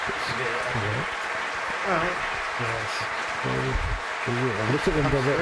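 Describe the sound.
Steady applause from a large audience giving a standing ovation as the President of Ukraine comes on fills the background throughout, a dense continuous clapping texture, while a voice talks loudly over it in the foreground.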